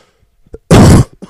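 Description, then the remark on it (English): A single loud cough right up against the microphone, a harsh, clipped burst of breath lasting about a third of a second, with faint mouth noises just before and after. “Just cough right in the mic.”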